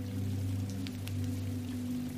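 Steady, soft rainfall hisses evenly throughout, with a few brief drip-like ticks standing out, all over a constant low droning hum. No one speaks.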